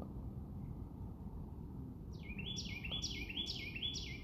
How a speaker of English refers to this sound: These birds are loud as fuck.